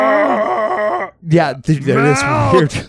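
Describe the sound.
A voice imitates a cow's bellow: two loud, drawn-out groaning moos, the first about a second long and steady, the second longer with a wavering, strained pitch.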